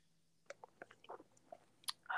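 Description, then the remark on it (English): Someone sips a drink: a string of small wet mouth clicks and light slurps, ending in a louder, fuller gulp or slurp. No one talks. “I had to sip my drink.”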